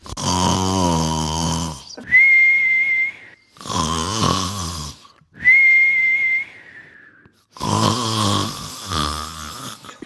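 Loud, cartoonish snoring of the sleeping pig Zhu Beiji: three long, low rumbling snores alternate with two thin, high whistling exhales, a steady sleepy rhythm with no talking.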